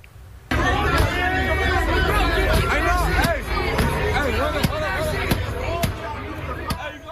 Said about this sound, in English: This is at the intersection of Central and Alondra. A huge crowd taking part in a sideshow turned on a nearby gas station, smashing windows and doors until they got in and then looted the place.